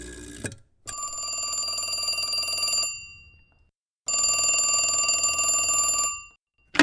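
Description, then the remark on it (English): An old-fashioned telephone bell rings in two long, loud bursts of rapid metallic clanging, about two seconds each, separated by a short silence, with no talking over it. “Is that the tele?”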